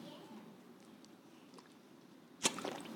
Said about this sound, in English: I'm just going to have a drink of water. Hang on.